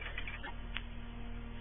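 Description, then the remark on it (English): A grandfather clock, a talking clock, ticks softly, a few faint clicks spaced apart over a steady low hum. “I showed her this grandfather clock here, this talking clock.”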